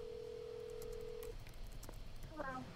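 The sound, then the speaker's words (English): A phone call being placed: a steady, low dial tone holds for over a second, then breaks off into a few faint clicks before a brief voice sounds at the end. “Should I give her a call”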